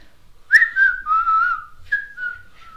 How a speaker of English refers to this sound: First time trying it on the podcast and you go and whistle.